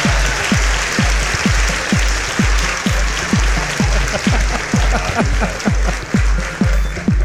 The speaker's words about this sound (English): One more round of claps. I think. There we go.